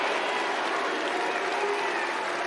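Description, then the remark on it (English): A steady, loud wash of noise from an Australian crowd drowning out Jim Courier as he tries to speak, a dense roar of cheering and clapping with no individual voice standing out above it. “I this is a bloody problem with Australian crowds, isn't it?”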